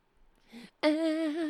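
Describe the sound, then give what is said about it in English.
A cat lets out a single loud, drawn-out meow, held steady for nearly a second, preceded by a brief soft rustling noise. “You're lucky you're a cat.”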